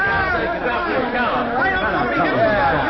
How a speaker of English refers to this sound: Heavenly days, look at the crowd, McGee. All right, one side there, folks.